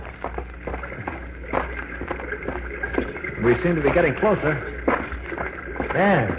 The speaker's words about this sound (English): Oh, I think I hear running water. Yes, you're right.